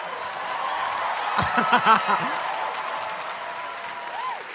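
A crowd of Harvard people cheering for their school claps steadily throughout, a dense wash of applause, with a short burst of loud whoops and cheers rising in the middle before settling back into clapping.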